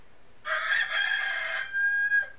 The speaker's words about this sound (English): She had a pet rooster named Old Boreas. He would only cock-a-doodle-doo at midnight.